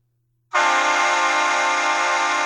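A loud, sustained blast from a Shocker S6 train air horn starts abruptly after a brief silence and holds steady with a rich, brassy chord-like tone until the end.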